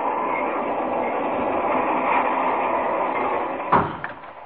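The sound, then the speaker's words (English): Steady, loud rumble of a fast-moving passenger train heard from inside a car, continuous throughout, with a sharp clunk near the end like a door closing. “I wouldn't want a barber fooling around with me with a razor on a train this fast”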